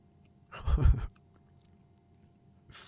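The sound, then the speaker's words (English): A Halls hard candy lozenge is bitten and chewed: a single loud burst of crunching lasting about half a second before fading to quiet. “This is probably going to be annoying, this crunching of the, can you hear it? Can you hear the halls?”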